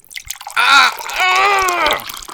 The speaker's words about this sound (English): Well, here, pour this alcohol on him.